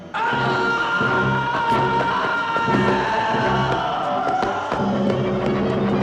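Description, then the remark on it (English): A man lets out a long, loud, anguished scream in a death scene from the film Ghost of Sora's Place. The scream holds for several seconds with a raw, strained tone, layered over a dense wash of dramatic film sound. “He screams a lot for that death.”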